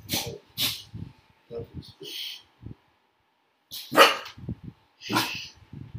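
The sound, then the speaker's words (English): A puppy barks in sharp, high bursts, several yaps spread across the moment, with people talking in between and around the barks. “Hey, puppy, stop it.”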